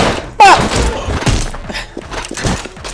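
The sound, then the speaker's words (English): A video game door is kicked open with one sudden, loud thudding slam, then a brief ringing tone over a steady bed of busy game noise. “Alright, careful with these doors as soon as you kick them open.”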